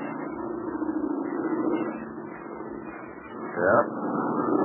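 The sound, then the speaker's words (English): An American-built airplane's engines drone steadily as it comes in low to land, a continuous rumbling hum that swells briefly louder near the end before settling back to a constant roar. “Yeah, the plane is going to land here.”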